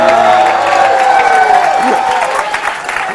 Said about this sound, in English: Chris Carl's made one more round of applause for Chris Carl, who's not even here.